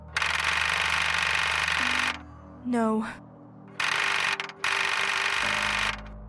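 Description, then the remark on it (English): A car engine cranks over in three loud, rapid, chattering bursts without catching as the key is turned, and a brief rising shout from a voice breaks in between the first and second attempts. “I turned the key, but the engine stalled.”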